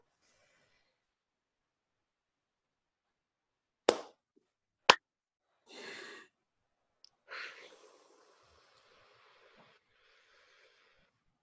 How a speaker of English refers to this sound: So the funny thing is, we could not synchronize that. For those of you that are not watching this on IGTV, or that you heard that and you're like, those were really weird claps. No, we did not synchronize that at all.